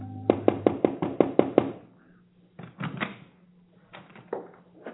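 A quick run of about eight sharp, evenly spaced knocks on the wooden door of a house taking in travelers in Toulouse after dark, loud, followed by softer scraping and clattering sounds.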